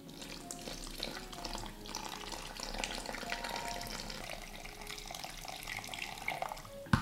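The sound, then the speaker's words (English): Hot water pours steadily into a mixing bowl of all-purpose pancake dough mixture with vegetable oil, a continuous splashing stream with a gurgling, bubbly texture, ending in a brief sharp clink; no one speaks. “And then I'm going to add in hot water.”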